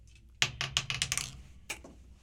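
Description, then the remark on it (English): Dice clatter onto a hard tabletop during a roll in a tabletop roleplaying game, a quick burst of sharp knocks rattling and settling over about a second, followed by one last separate tap. “I gotta stop doing that. Try to keep control of your dice, please.”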